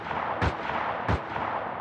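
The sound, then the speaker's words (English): Two sharp, loud gunshots go off about two-thirds of a second apart, each a sudden booming crack over a steady hiss of background noise, with no one speaking; fired at night from a house on Pearl Street in Keene, New Hampshire. “It all began on the night of December 21st, 2013, when neighbors heard three loud gunshots coming from a house on Pearl Street in Keene.”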